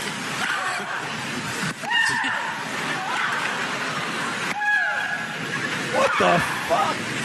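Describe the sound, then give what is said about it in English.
A female tennis player lets out several loud, drawn-out shrieking grunts in separate bursts during a tennis match, each rising sharply then trailing off, over a steady wash of background crowd noise. “How big would your dick have to be to make a girl scream like that?”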